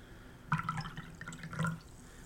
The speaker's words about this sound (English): Oh yeah, right next to the microphone, pour the water. I was too far away for that to be good.